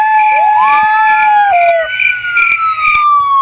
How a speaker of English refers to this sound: Actually, we're in the IE. You hear the sirens?